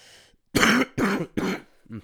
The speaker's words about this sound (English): I'm getting a little bit of a cough this week.